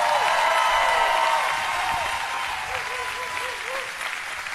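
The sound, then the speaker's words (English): A large university audience applauds the university faculty steadily, a dense wash of clapping that stays loud throughout and eases slightly after the first second or so, with faint whistles or cheers rising above it. “Let's give the university faculty a round of applause.”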